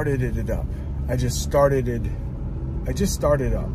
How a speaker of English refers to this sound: Before we gas up the car, I needed to start it up. So I had to start up my car, and I just did. So I started it up, started it up. That's hard to say. I just started up my car. I just started it up.